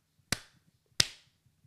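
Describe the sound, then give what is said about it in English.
Two sharp, bright hand claps marking the move to segment number five, about two-thirds of a second apart, each a loud crisp smack with a short ringing tail, over quiet low background hum. “And I'll clap.”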